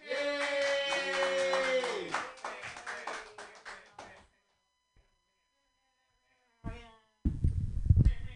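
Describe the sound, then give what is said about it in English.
A drawn-out vocal cheer gives way to a couple of seconds of scattered audience clapping that quickly thins out, followed by silence and then a short burst of loud, muffled crowd noise. “So clap for me, yay!”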